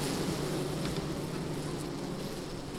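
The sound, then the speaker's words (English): A dense, steady drone of many bees buzzing inside an opened beehive, recorded with the microphone right next to the hive, a continuous low hum with no breaks and no voices. “I'm going to put my microphone right next to the hive so you can all hear these bees.”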